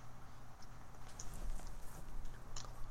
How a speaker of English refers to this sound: I'm going to sip of water while I think about that.